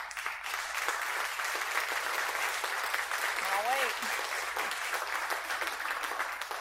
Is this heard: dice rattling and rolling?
no